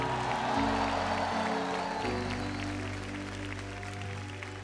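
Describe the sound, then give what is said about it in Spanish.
An audience claps and shouts praise to God in a dense, sustained roar of cheering lasting several seconds, with low held keyboard chords sounding underneath, gradually easing off toward the end. “Somebody give God a mighty shout of praise.”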